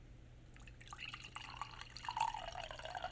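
Liquid trickles and splashes into a glass close by, a steady thin pour with small drips and a rising gurgle near the end, with no voices.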